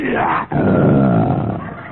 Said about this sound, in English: And as the night wore on, my feverish mind was frightened by the sounds of the jungle. The roar of the lion.